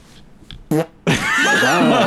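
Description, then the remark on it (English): A loud, close-up fart blasts right into the microphone: a short burst, a brief pause, then a longer sputtering, rumbling release that lasts over a second. “Cause how the fuck are we supposed to act normal when you're whole, literally about to whole, fart on the mic?”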